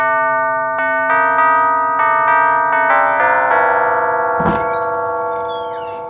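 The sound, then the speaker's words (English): A chiming house doorbell plays a bright, ringing melody of several quick notes that linger and overlap, followed by a short thump and some high chirpy squeaks near the end. “Shall I ring the bell?”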